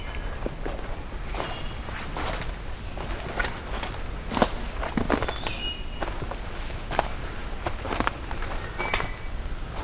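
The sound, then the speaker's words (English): A few brief, fluty wood thrush phrases ring out faintly over a steady crunch of footsteps as someone walks back along the ground during a breeding bird atlas survey. “Okay, as I'm heading back, getting treated to a wood thrush here.”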